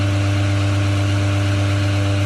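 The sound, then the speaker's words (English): A 7-liter Duramax engine with a 5-liter Whipple supercharger idles steadily, a loud continuous low rumble with a faint whine layered on top, never revving or changing pitch. “What kind of engine is that idling? Sounds like something with a blower.”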